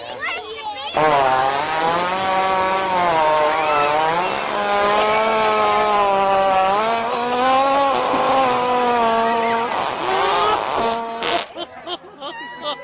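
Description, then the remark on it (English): An animal fart: one long, loud, buzzy blast of about ten seconds, low-pitched and wavering up and down, ending in a few short sputters. “An animal fart.”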